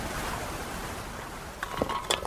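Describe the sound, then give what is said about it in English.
A steady, even wash of ocean surf and breeze fills the background at moderate volume, with a few brief higher-pitched calls breaking through near the end. “I'm going to enjoy the ocean breezes.”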